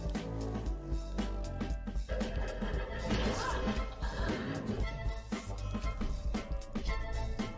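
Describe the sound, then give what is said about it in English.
Loud, repeated crashing and smashing impacts of robots being smashed, over a dense, steady mechanical roar and music-like tones, continuing throughout with no clear speech. “And now we're back to smashing robots.”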